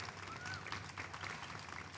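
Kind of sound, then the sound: crowd, round of applause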